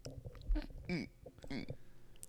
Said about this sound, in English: Yeah, slurp that a little louder. Thanks.